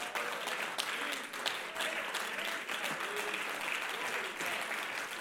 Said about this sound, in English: Let's all jump to our feet. Let's clap our hands and thank God for his word.